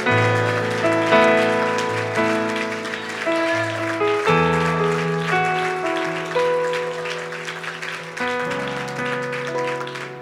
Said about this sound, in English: Well, why don't you one more time give him a great hand clap of praise? Come on, why don't you do a little bit better than that, because he's worthy. And why don't you clap your hands and why don't you lift your voice?